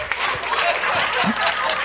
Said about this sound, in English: Come on, give the Lord a hand clap of praise in this house. Don't you love him?